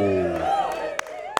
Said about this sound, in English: That's a clapping thing.